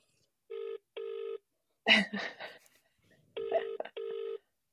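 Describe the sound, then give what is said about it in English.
A man's phone call to his wife rings out over a speakerphone: two pairs of buzzy double-ring tones, separated by a brief burst of rustling or muffled voice, tinny and moderately loud. “I'm just gonna give my wife a quick call and let's just see”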